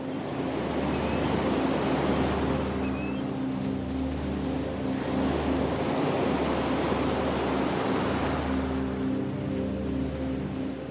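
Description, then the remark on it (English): Continuous loud roar of ocean surf breaking on the shore, waves washing in with gentle swells in intensity, with a low steady rumble underneath and no voices. “Imagine yourself at the beach and take big wave breaths. Let's do it again. In with the wave, out with the wave.”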